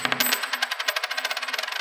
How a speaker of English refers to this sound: Let's go ahead and find out, what does the coin predict?